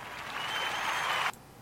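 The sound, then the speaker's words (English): A short burst of clapping, dense and steady for just over a second before stopping abruptly. No voices are heard over it. “Hey, clap about that, right?”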